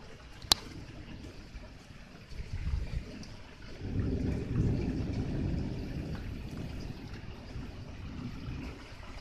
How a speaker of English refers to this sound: The lightning strobes. The white light peeks between the tree limbs. It's slightly frightening. I love a good storm. I can sleep in a storm.